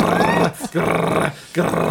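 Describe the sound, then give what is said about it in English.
A voice imitates the rapid, fully automatic machine gun fire of the Rambo arcade shooting game with a loud, rough, rattling buzz in three sustained bursts separated by brief pauses. “And it's like the first shooting game I've ever seen where you just have a fully automatic machine gun constantly.”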